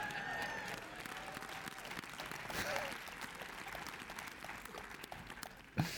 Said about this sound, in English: Okay, you're still single clapping, gang. I need a double clap.